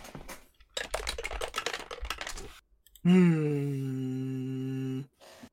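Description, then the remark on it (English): Skull dice clatter and rattle across a hard tabletop in a quick burst of clicks, followed after a short pause by a loud, steady humming tone lasting about two seconds. “You roll a dice.”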